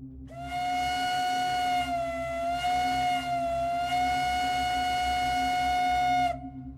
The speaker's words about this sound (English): For instance, the following is the standard American train whistle from the 1840s and 50s. Now, I've turned all these samples down considerably to save a few eardrums, but if you're wearing headphones, quick heads up.